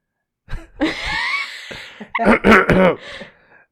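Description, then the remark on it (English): A loud throat clearing: a raspy, gravelly rumble followed by a second harsher burst of hacking, lasting about three seconds with no speech. “I'd kind of like clear my throat, I guess.”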